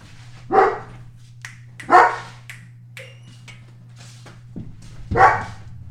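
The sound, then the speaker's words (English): A dog barks three times in sharp, separated bursts at roughly even intervals, fairly loud, at a mailman in the front yard, over a steady low hum, with a few fainter yips from little dogs outside in between. “who's just upset at a mailman in the front yard at the moment. Oh, sounds like there's some little dogs out there.”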